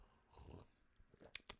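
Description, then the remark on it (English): A quiet sip of hot coffee: soft low slurping and swallowing mouth sounds, then two sharp wet lip smacks near the end, with no talking. “Let me have a sip of coffee first, instead of rustling some newspapers.”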